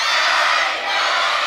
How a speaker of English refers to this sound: I wonder what it sounds like if all of us scream together. Are you ready? One, two, three.